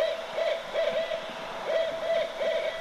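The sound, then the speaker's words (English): Owls up in the rafters hooting in a steady series of short, tonal calls repeating every half second or so over a soft hiss of background noise, with no voices. “Oh, lovely to hear the call of the wild, the owls.”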